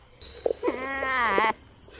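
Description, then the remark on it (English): A goat lets out one drawn-out, wavering bleat lasting about a second, fairly loud, with a couple of soft knocks just before it and a steady faint hum behind. “That's where the goats come in.”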